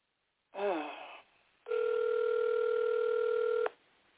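Phone tones heard over a thin, narrow telephone line while a caller is being added to the call: a short warbling blip, a brief pause, then a steady, loud electronic tone held for about two seconds before cutting off.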